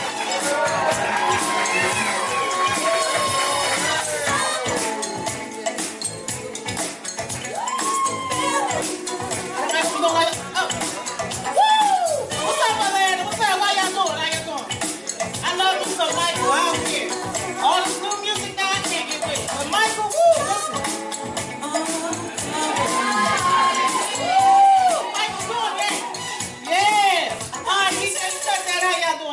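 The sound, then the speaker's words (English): A large comedy-show audience cheers and applauds steadily for a female comedian coming up to the stage, a dense wash of clapping and whoops with scattered voices shouting and calling out over it, loud. “Bring it up. Egyptian. Yell, hood, give it up for y'all.”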